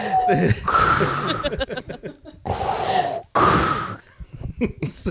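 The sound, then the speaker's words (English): A man's voice does a Wookiee impression, a growling roar with repeated raspy, warbling howls that rise and fall in pitch, loud, broken by brief pauses and breathy snorts. “Are you having a seizure over there, or is that what your Wookiee impression?”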